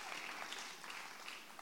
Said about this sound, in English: If you're going to get in there, get in. Don't patty cake it, okay? Get in there and clap it in.